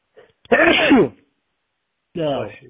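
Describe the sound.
A single loud sneeze, caused by allergies, bursts out, followed after a short pause by a brief voiced sound from someone.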